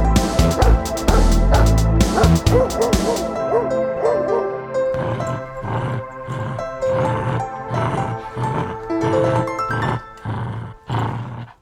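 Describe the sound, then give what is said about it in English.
A short musical jingle with a dog barking loudly over it, the barks repeating in a steady rhythm throughout alongside bright tonal music and a growly burst near the start. “You sneeze away, I'll queue up a jingle, and we'll talk about video games.”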